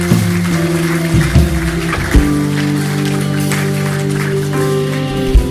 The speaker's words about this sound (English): Let's give the Lord a clap offering together.